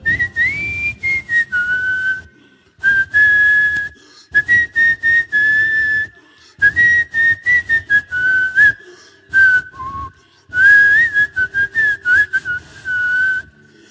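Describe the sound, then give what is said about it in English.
A person whistles a song, clear sustained tones gliding between pitches in phrases with brief breaths between them, continuing steadily for over ten seconds with no talking. “Minstrel, whistle one song for me.”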